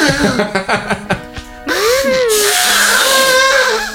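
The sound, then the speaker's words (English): A person imitates an elephant's trumpet: a few short choppy vocal bursts, then a loud, sustained, brassy wail with a wavering, sliding pitch that holds for about two seconds. “No, like an elephant's like... But I can't do it.”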